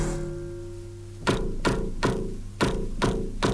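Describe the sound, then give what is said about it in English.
A lingering piano tone fades out, then six dull, muted thumps follow in an uneven rhythm from an unamplified piano string prepared with a bolt, rattly things and bits of plastic to imitate a kick drum with its note taken off; each a short, pitchless knock of moderate loudness with no voices. “You can hear that the kick has had its note taken off, and it now sounds like a sort of thump.”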